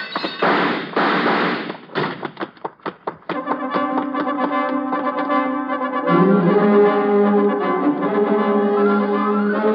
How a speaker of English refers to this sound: I managed to knock the lamp off his desk and beat it before he can find the range.